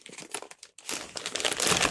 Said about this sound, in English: same wrapping paper. No special wrapping privileges for either of us. Yeah, but yours were wrapped.